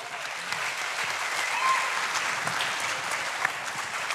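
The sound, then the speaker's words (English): Sustained applause from an audience at a live show for the speaker's business partner, a dense, steady crackle of many hands clapping at once, holding at an even level for a few seconds without any voices standing out. “I don't clap for him, but I'm glad.”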